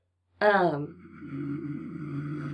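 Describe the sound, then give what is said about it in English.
A person mimics snoring: a loud, sharp nasal snort gives way to a low, rattling buzz that drags on steadily, with nothing else around it. “You snored!”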